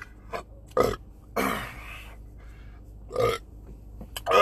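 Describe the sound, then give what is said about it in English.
Several loud, throaty burps in quick succession, with a long drawn-out belch in the middle and shorter ones before and after, no talking. “Stop burping, bro, because I was fucking methaning up the house.”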